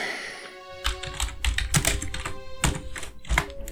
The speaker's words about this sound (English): Okay, roll two dice. Alrighty.